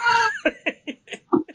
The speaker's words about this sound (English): That's a staple of our show, actually. Yeah, Otis is our third voice, so. I was wondering if I was hearing a cat. What is that?